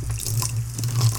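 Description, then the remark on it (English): A steady stream of Pepsi Cola pours into a container, a continuous splashing gurgle with a low hum underneath, lasting about a second with no voices. “Hey lad, fill me up with some Pepsi Cola.”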